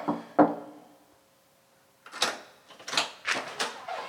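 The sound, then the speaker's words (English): A single sharp knock on an apartment door rings out, then after a short pause come several rougher wooden raps and rattles at an uneven pace, all with no voices. “Little knock and knock on the door.”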